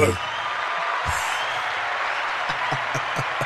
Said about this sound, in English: That's a round of applause right there for you.